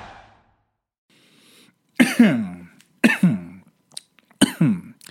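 Three loud, harsh coughs, evenly spaced about a second apart, each a sharp burst with a raspy, throat-clearing tail, preceded by a faint quiet stretch.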